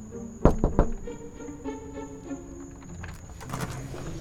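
Three quick, sharp knocks rap on a new neighbor's door across the hall in a tight rhythm, followed by a stretch of quiet shuffling and faint movement sounds, with a thin steady high hum throughout.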